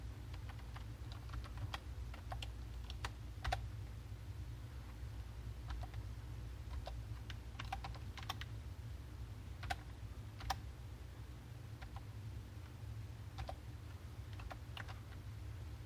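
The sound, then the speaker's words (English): Rapid, irregular keyboard clicks as someone types a product key, including dashes, on a computer keyboard, sharp taps scattered over a steady low hum, with short pauses between bursts of keystrokes. “Maybe you can hear the typing.”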